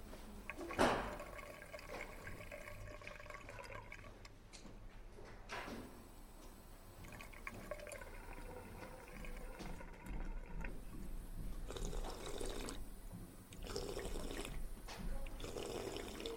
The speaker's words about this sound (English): I headed into the library and refilled my water bottle at a water fountain.